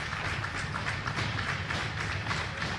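Hockey players clap their sticks against the ice during a game in a quick, steady series of sharp wooden taps, carried over a constant low crowd rumble with no clear talking.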